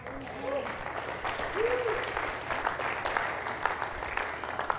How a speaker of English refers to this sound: Okay, so if you clapped, I want to see you dancing and worshiping at the end. See how the claps just went from like 90% of the people to about 7?